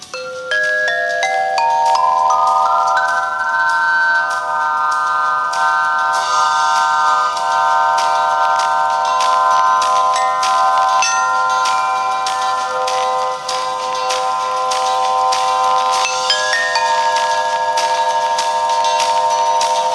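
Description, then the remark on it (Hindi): A hanging swinging chime with nine tubes, like a large hanging xylophone, is set ringing. Its bright metallic tones enter one after another and sustain in a shimmering layer, with constant light clinking strikes throughout and no voices. “वैसे ये swinging chyme है। ये 9 ट्यूब्स के साथ है।”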